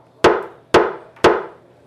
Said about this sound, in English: The chief picked up his gavel and slammed it down.